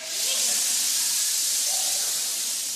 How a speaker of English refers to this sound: So, I count to three, I want you to give me the best hiss you possibly can. One, two, three.